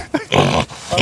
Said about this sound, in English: Saul pressing the pig button, that's his big moment of the week